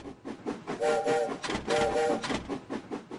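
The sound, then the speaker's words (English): Two short, fairly loud train whistle blasts sound over a steady rushing rumble of a passing train, with a brief pause between the hoots. “This is so cute. I love trains.”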